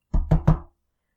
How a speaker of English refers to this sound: She lay there for an hour, perhaps. Her eyes unable to close for the events that had transpired that night. She heard a knock at her bedroom door.